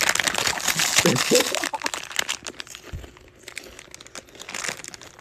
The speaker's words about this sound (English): I'm just here, you know, munching on my popcorn bowl.